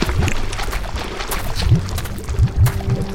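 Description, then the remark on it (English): Churning, sloshing liquid of a burning river as Satan emerges from it, with deep rumbling surges rising and falling, a dense continuous wash of noise and a few heavier swells near the end, with no voices. “Satan began emerging from the burning river.”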